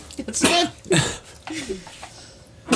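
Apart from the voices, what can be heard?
sneeze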